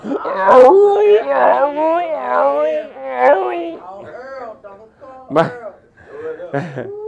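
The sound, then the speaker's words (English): A man's voice imitates vomiting and retching, as if trying to throw up silently in a bathroom: strained, moaning gags that rise and fall, broken by a few sharp, harsh heaving bursts over about seven seconds, with no actual words. “Look, I'm trying to throw up silently.”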